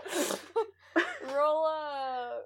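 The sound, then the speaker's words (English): A voice imitates a sneeze: a sharp, breathy burst followed by a couple of short vocal catches and a drawn-out, wavering voiced tone. It is moderately loud, with no other talk. “I am going to sneeze, pretend sneeze, and like toss it over my shoulder.”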